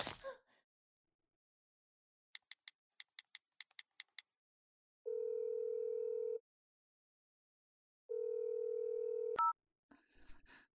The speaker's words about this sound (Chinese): 我这就打电话给我老公